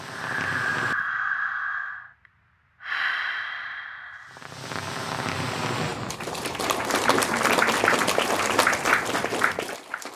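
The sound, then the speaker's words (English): A few breathy, sigh-like exhalations give way to a burst of clapping from a small group at an Alcoholics Anonymous meeting, dense and swelling over several seconds before cutting off. “I definitely got louder claps than Brad.”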